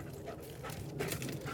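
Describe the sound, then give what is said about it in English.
Pager, a search dog, pants and sniffs in quick, breathy bursts while roaming the perimeter of a rubble pile with a crowd of people watching, a steady run of short huffs at moderate loudness with no voices over it. “Pager's struggling a little, but there are a lot of unusual smells with the crowd of people watching.”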